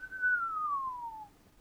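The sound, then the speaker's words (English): A single short whistle, a clear pure tone gliding slowly downward in pitch over about a second, fairly quiet and heard alone with no talking. “you see her cast Identify, and she kind of whistles a little bit.”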